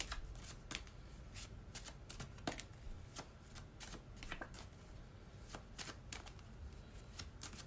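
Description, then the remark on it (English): A One Manifesting Fertility Goddess oracle card deck being shuffled steadily, with quick, crisp papery snaps and riffles in an irregular rhythm, fairly quiet, with no talking. “So I'm just shuffling away here.”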